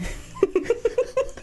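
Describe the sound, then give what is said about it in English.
A voice imitates a young goat or lamb bleating, heard from somewhere in a stable: one short, wavering call broken into about six quick, evenly spaced pulses, fairly loud, with no other talking. “Yeah, like an animal noise. Like a baby... baby sheep.”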